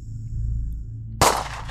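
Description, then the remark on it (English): A low, steady hum is cut by a single sharp gunshot that bursts out suddenly and trails off in a rolling, echoing decay, heard around midnight while camping, seeming to come from the other side of a mountain range. “But the sound of a gunshot around midnight woke me straight up.”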